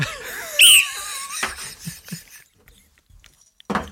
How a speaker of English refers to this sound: I just worked out, is that whistle just a cue so you can see in the waveform where the bits that need editing are? Actually, that's a good idea.